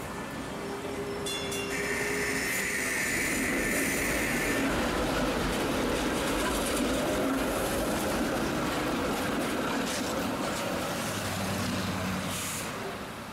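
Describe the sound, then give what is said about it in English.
A recently updated, sleek, longer streetcar rumbles past a window, swelling up and fading away over several seconds, with a high squeal of brakes or wheels early on and a steady low mechanical drone throughout. No one speaks. “The streetcar, which has recently been updated to be sleek, longer, and super uncomfortable, passes by my window. I miss the old streetcars that sounded like they were dying and moved like boats.”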